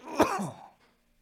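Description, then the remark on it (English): A single harsh cough goes right into the microphone, a sharp burst followed by a rough, breathy tail that fades within a second into near silence. “I'm coughing bad into the mic right now.”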